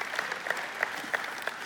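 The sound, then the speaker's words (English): An audience claps their hands together in praise of God in a dense, steady patter of applause, with a few sharper claps standing out at a fairly even pace. No one speaks. “Someone give God a hand clap of praise and say amen.”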